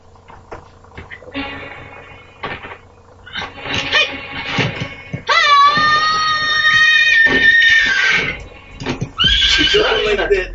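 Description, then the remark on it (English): A person imitates a horse's whinny with a loud, quavering, high-pitched neigh lasting a few seconds. Shorter vocal bursts come before it, and another whinny-like cry follows near the end. “I thought she was riding a horse.”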